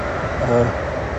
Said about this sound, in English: Oh, dear, oh dear. Lots of trains all of a sudden.